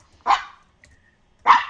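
A dog barks twice, two sharp, loud barks about a second apart with a near-silent pause between them, with no one talking.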